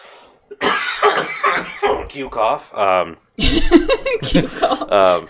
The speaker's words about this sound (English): But yeah, I have the COVID cough. It's different.